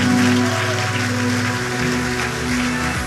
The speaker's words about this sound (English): Before we do that, give Jesus the best hand clap you have all day. God bless you.